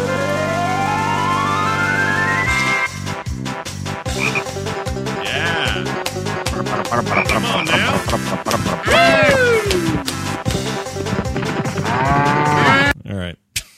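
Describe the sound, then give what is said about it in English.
Video game menu music opens with a long rising tone, then breaks into a steady, bouncy beat full of twangy banjo notes and sliding, croaky novelty sounds before cutting off abruptly. “Here's a little sound effect from that game. It's actually menu music and stuff.”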